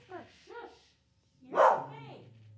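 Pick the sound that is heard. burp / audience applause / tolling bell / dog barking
dog barking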